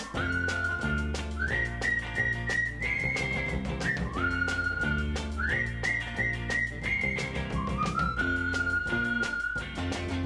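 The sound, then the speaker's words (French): A melodic whistled tune, the friends' whistle that boys use in the street to call a friend, repeats in short phrases, clear, over steady rhythmic background music with a regular beat; no one speaks. “Pour l'appeler, il en prend un truc qu'ils ont mis au point, le sifflet des copains.”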